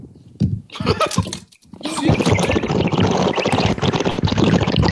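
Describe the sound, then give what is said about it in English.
Loud sipping of water, a wet, rushing slurp that starts in short bursts, briefly pauses, then swells into a sustained noisy gurgle. “No, I was just sipping water.”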